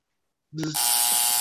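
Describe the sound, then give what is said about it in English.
After a brief silence, a quiz buzzer is pressed during a Moon Knight trivia quiz: a loud electronic buzz kicks in abruptly and holds steady, a harsh sustained tone, with no talking. “Okay, guys, hands on the buzzer, all wave, do anything, call out.”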